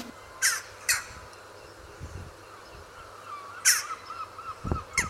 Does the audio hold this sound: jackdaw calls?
yes